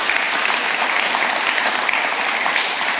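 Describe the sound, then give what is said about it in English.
An audience claps and cheers steadily for several seconds in the rain as people are called up to be prayed for, a dense, loud wash of many hands with scattered voices mixed in, continuous without pause. “You can cheer and clap.”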